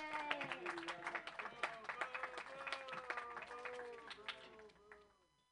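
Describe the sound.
A comedy show audience claps and cheers for about five seconds as the next comedian is introduced, dense overlapping hand claps mixed with voices whooping and shouting, loud and steady before fading out quickly at the end.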